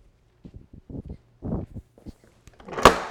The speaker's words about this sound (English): Just stand right where you are. Close that door right there.